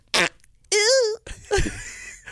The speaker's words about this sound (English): Did you hear my fart sounder? Do it again.